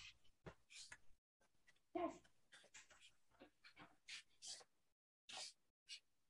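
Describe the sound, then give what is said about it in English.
A dog whimpers in its sleep while having a nightmare: a string of soft, breathy huffs and pants broken by one brief, high whine, quiet, in short irregular bursts. “Whereas, hang on, my dog is having a nightmare.”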